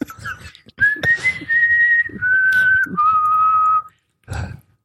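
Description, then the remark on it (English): The whistled theme tune from the opening credits of the TV show Lassie, a few long, sustained notes stepping up and down, clear and fairly loud, with brief bursts of noise before it and a short sound after it. “That's Lassie whistling in the opening credits.”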